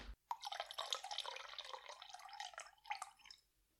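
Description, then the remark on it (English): A short pour of half an ounce of Chambord raspberry liqueur for a cocktail, a steady trickling splash lasting about three seconds before tapering off, with no one talking over it. “Okay, the next thing is 1/2 ounce of Chambord.”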